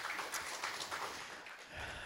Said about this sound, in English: Amen. Let's give the Lord one more clap offering. Amen.